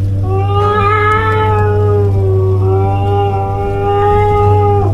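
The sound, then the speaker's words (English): A cat lets out a long, drawn-out meow that wavers in pitch, loud, over a steady low hum, with no one speaking. “You better not be scaring me, cat.”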